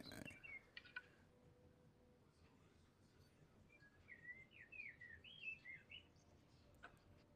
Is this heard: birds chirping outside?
yes